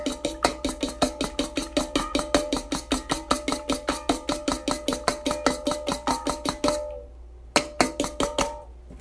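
An egg and milk being beaten with a fork: quick, steady clinks against a bowl with a light metallic ring, about four per second, pausing briefly before a few more strokes.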